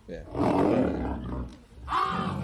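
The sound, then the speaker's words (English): A lion lets out a deep, rumbling roar that swells loudly, dips briefly, then surges again in a second strained burst, close and powerful, with no talking. “I mean, this lion was clearly going through issues throughout the day.”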